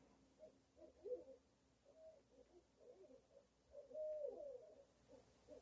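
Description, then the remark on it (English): An owl in one of the trees around a house hoots repeatedly outdoors, a string of soft, wavering calls with short pauses between them, faint against a quiet background, with no one talking. “I have an owl.”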